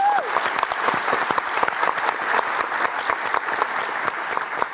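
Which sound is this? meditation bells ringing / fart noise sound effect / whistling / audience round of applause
audience round of applause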